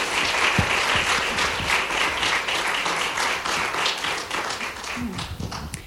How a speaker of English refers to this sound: And I think everybody here can attest to that. So could we all just give her a round of applause this morning?